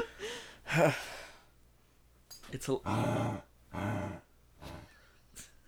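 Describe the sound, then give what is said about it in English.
A dog growls in several rough, breathy bursts of uneven length, separated by short quiet gaps, with no talking over them. “If I ever need bad audio of a dog growling, I'm saving this.”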